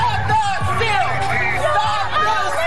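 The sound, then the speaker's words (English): A dense outdoor crowd of thousands of Trump supporters rallying in the streets of Washington, D.C. roars with overlapping shouts, whoops and chanting voices, chanting "This isn't over," a loud continuous hubbub of many people yelling together. “thousands of his supporters this weekend flooded the streets of the Capitol.”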